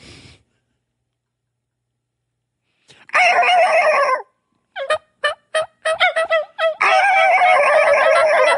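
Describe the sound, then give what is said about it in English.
A tom turkey gobbles loudly in a long rattling burst, followed by a quick series of short choppy notes of a tree yelp call and another drawn-out gobble, with no talking. “I may tree yelp again and see if I can get him to spark off on that yelp.”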